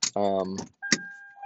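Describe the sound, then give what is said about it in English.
A brief voice sound, then a car door latch clicks open as a person gets out of the car at the Salton Sea, and a steady electronic warning chime begins, droning at an even pitch. “But right now, I'm going to get out of the car.”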